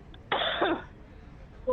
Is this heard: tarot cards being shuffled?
no